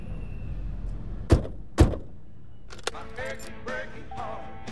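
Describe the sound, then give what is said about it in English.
Two sharp thuds of car doors shutting, close together, as people get into a parked car on a breezy day, over low wind rumble, followed by a quieter click and faint voices or music starting inside the car. “Oh, there's the car. There's the car, right? Man, it's breezy outside. Okay, let's get in there.”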